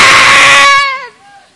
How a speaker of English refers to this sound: Goats.